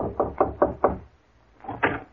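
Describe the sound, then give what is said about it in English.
Someone knocks on a door: a quick run of five firm raps, a short pause, then two more knocks. Fairly loud, with no voices. “I'll see who's at the door”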